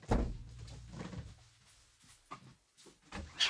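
A front door is opened with a solid thunk and a low rumble, followed by a few quieter knocks and clicks as it swings and settles, with no voices.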